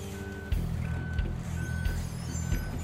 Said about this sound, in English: Driver takes the keys, pops the car in neutral, and loads the car onto the bed of the tow truck.